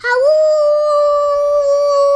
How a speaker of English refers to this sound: He heard a howling sound.